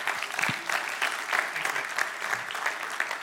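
An audience in an auditorium claps steadily for a few seconds for a speaker, a dense, even wash of many hands with a crisp, bright texture and no voices standing out.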